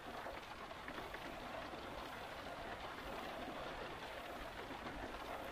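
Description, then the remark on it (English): A steady, soft hiss of light rain from isolated rain clouds sprinkling delicate droplets at night outside a pitched tent, pattering continuously throughout, with fine droplet texture and a low rumble underneath; no voices. “A few moments ago, some isolated rain clouds drifted overhead and began sprinkling delicate droplets of rain.”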